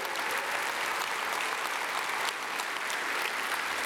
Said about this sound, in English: More than 35, more than 40, 45. Now this will be worthy of some applause right here.